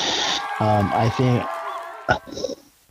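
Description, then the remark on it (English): A goose honks twice in quick succession, harsh nasal blasts with a buzzy edge, followed by a sharp knock and a brief scratchy rustle before fading out. “get that damn goose out of here.”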